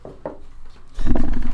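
A deep, rumbling roar bursts in loud and close partway through and holds steady to the end, after a few quieter knocks and rustles.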